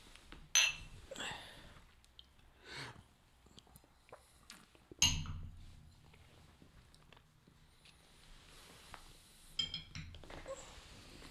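Glasses clink together in a toast during a spirits tasting, with a couple of sharp, bright knocks a few seconds apart amid quiet handling and tabletop rustle.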